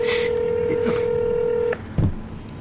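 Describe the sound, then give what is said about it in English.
A telephone keypad tone, dialing a number, holds steady and loud for nearly two seconds, then cuts off abruptly, followed by a brief soft thump and quiet background noise. “Answer the phone. She may be at work. Call her at work.”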